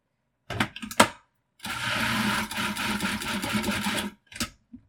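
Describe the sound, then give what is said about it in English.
A blender pulses two cans of tomatoes: two quick bursts, then a sustained grinding run of about two and a half seconds, followed by two more brief pulses, loud with no talking. “And now I have two more cans to pulse.”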